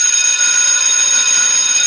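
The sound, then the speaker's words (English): A bell rings continuously with a loud, steady, shrill metallic clatter that holds the same high pitch for the whole two seconds, with no voices. “A bell.”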